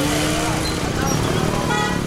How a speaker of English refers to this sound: Even if you haven't seen it for yourself, our correspondents on the show keep pointing out just how bad traffic can be in many Asian cities.